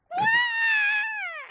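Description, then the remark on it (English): The small robot droid R2 lets out one loud, high-pitched scream, starting with a raspy burst, holding a steady shrill tone for over a second, then sliding down at the end. “The little robo screams.”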